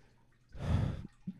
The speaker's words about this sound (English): I have a yawn building up. That's why I sound a little weird right now.